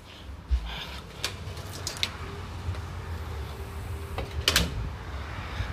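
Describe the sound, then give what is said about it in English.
A screen door is handled with several scattered clacks and rattles, ending in a sharper clatter as it swings shut, over a low, steady background rumble. No one speaks. “I don't want the door to lock, because earlier my mom's screen door had locked.”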